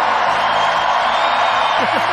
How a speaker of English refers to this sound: That's a big round of applause for the United Kingdom.